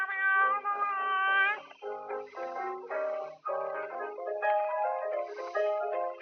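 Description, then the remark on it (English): A song built from cat meows: a string of drawn-out, bending meows follows one another almost without pause, loud, forming a sort of melody with no talking. “You gotta love cats.”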